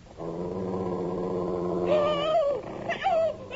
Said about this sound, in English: Help! Help! Get it off me! Get it away! Help! I see the damn thing! It's a wolf! I'll kill it!